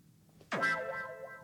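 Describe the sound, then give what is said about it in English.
A quiz buzzer sound effect, one player's buzzer in a quiz game, goes off suddenly: a springy, boing-like sweep that settles into a bright, sustained buzzing tone for about a second, loud and with no talking over it. “Okay, Scott's buzzer.”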